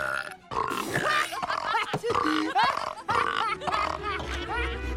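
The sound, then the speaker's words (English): A chorus of loud, drawn-out burps from several people after drinking a burping formula soda in the Jimmy Neutron movie, overlapping one after another with hardly a pause, some rising and wavering in pitch over a faint low rumble. “And then everyone drinks the soda and everyone starts burping.”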